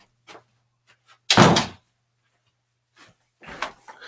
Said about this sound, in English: I'm going to use this opportunity to close that door. Hang on one second.